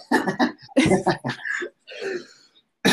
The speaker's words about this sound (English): Sorry, I'm just coughing. I got a cough. Hashtag COVID.